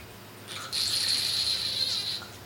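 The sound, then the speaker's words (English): A wine aerator lets out a steady, high-pitched whistling hiss with a faint gurgle as a California wine pours through, lasting about a second and a half before cutting off. No one speaks. “It's also a hilarious noise that it makes.”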